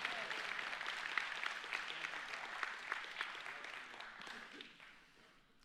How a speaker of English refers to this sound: If you believe that today, give him a hand clap. Say amen.